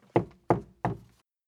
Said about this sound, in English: I open the screen door and knock, bare knuckles on wood.